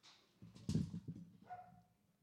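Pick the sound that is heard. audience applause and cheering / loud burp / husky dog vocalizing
husky dog vocalizing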